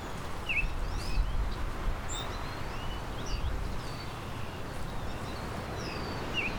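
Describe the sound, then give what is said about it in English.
Faint, high whistled notes from a Baltimore oriole come in short, scattered phrases over a steady wash of windy, buzzing background noise from wind and many bugs in a sheltered little patch of pine, with no voices. “There's a Baltimore oriole. A high-pitched whistle.”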